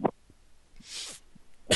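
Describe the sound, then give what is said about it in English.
A few short coughs: a sharp one at the start, a breathy rasp in the middle, and another forceful cough at the end, with no talking. “Oh, got a little bit of a cough.”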